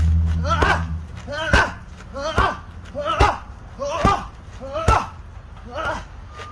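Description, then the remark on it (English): A boxer's punches smack into pads during pad work in a steady rhythm, about eight sharp thuds spaced under a second apart, each joined by a short vocal burst, with a voice audible underneath. “Look at the pad work.”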